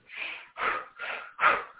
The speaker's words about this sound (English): Or we practice conscious breathing, which conscious breathing can actually lift us up and elevate us if we breathe more quickly.